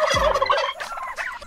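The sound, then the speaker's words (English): Turkeys gobble in a rapid, rattling burst, loud, followed by a few shorter gobbling calls trailing off and a brief rise at the end. “Kill the turkey sounds, would you?”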